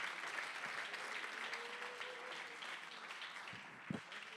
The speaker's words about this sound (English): Oh, come on, if anybody knows what I'm talking about, can you clap your hands? Can you give him praise as testimony this morning?